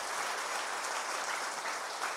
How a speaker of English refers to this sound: Give the guys all a round of applause.